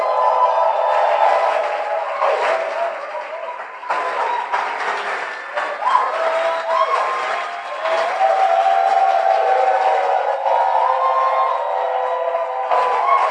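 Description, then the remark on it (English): A crowd applauds steadily for a bishop for over ten seconds, a dense wash of clapping mixed with scattered cheers and voices that holds a fairly even loudness throughout. “Can we give Bishop a round of applause?”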